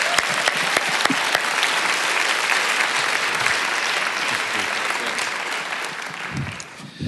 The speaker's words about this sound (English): So this morning, I want to invite you to give a great rousing applause as the Reverend Jimmy Bratcher comes and shares God's word with us this morning.